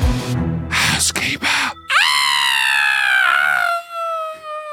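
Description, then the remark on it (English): After a couple of seconds of talking, someone lets out a long, loud, high-pitched scream that swoops up sharply, holds steady, and trails off over about three seconds, performed as a sting introducing a segment. “I've perfected my scream.”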